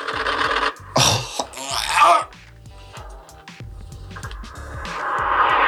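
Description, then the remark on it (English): Two short, harsh buzzing roars from the rapid-fire cannon of an A-10 Warthog aircraft in the online action game War Thunder tear through in quick succession, followed by a steady rising engine drone with faint voices and clatter underneath. “The legendary A-10 Warthog.”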